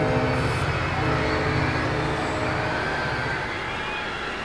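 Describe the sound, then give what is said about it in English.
A train roars along the tracks, a loud, steady rumble with low droning tones that stays continuous throughout, without pause. “Screaming down the track, the transcontinental terror is making its nightmarish run.”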